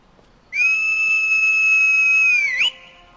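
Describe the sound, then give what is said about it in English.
One loud, sustained whistle holds a steady high pitch for about two seconds, then flicks upward and cuts off, like a whistle to summon a horse. No one speaks. “And time to whistle up”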